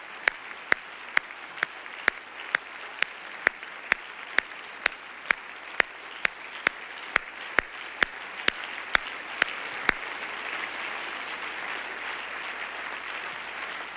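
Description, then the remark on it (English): An audience claps in honor of veterans, in steady unison, roughly two sharp claps per second for about ten seconds, then the beat stops and a broad, even wash of crowd noise carries on with no one speaking. “Come on, clap your hands, everybody. Give applause where it is due.”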